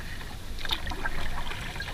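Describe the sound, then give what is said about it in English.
A kayak hull scrapes and rubs over something just under the water at low tide, a steady grinding with soft watery sloshing around it, about two seconds long with no voices. “Probably heard that rubbing across some is underneath the water there.”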